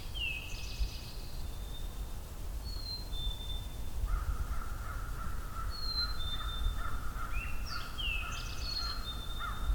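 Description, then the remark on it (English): An American crow caws in a steady run of harsh calls during the second half, while other small birds chirp and whistle higher up over a constant outdoor rumble. “American crow.”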